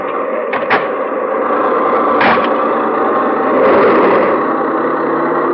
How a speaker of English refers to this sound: The car lurches forward, you slam the door, and it's done.